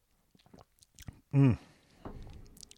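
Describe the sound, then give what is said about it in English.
Someone takes a sip of red wine: soft wet mouth clicks, a brief swallow with a short hummed 'mm', then a breathy exhale. “Oh, let's have a sip of Reed and Wine to get us in that place.”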